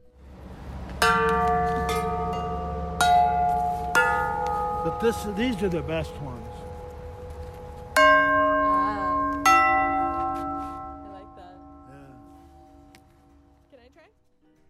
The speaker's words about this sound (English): And we wove through his meandering path of sculptures. The dinosaurs, the creatures, the big arrangement of welded wind chimes.